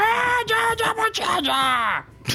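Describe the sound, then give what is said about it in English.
A voice imitates a fire mephit screaming in Ignan after being hit by a crossbow for 12 damage: a string of strained, gibberish yells with wavering, falling pitch, loud and raspy, ending in a short sharp burst. “You hit this mephit and do 12 damage. It and screams out in Ignan.”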